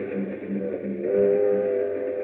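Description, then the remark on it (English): A train travelling to Miami, a steady low rumble and rattle with a sustained, slightly wavering whistle-like tone riding over it that swells a little louder partway through. No one speaks. “Meanwhile, on a train to Miami...”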